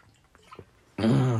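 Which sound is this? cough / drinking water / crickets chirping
drinking water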